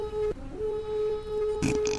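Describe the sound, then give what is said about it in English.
A Viking war horn sounds a long, steady, buzzy note, held at one pitch for about two seconds, as the signal that a Name That Tune game is starting. The tone dips briefly near the start and turns rough and noisy toward the end. “The Viking war horn.”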